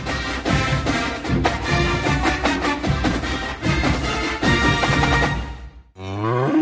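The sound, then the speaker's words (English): A cow moos once, a low, drawn-out call near the end, right after a loud, dense stretch of busy sound cuts off. “This is a cow whose milk became everyone's favorite cheese at the craft fair.”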